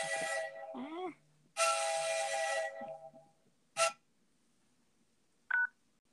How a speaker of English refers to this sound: Just like you heard the train coming through, that's how fast life gets by. Just yes, and you don't hear that whistle until it's right up on you.